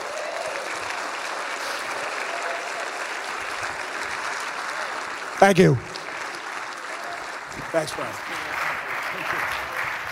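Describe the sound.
Sustained audience applause for a comedian after his set fills the whole stretch, a dense wash of clapping, while a man briefly speaks over it near the middle and again later.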